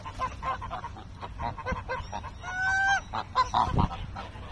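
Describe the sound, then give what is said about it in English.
Geese honk repeatedly in a busy, overlapping chorus, with one long drawn-out honk standing out amid shorter calls and soft background bustle at a pond. “I didn't need to know what they were saying, but you could make up stories about what they had to honk on about.”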